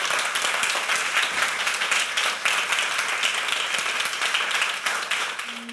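A large audience applauds steadily, a dense wash of many overlapping hand claps at a fairly loud, even level that holds throughout, then begins to thin slightly at the very end.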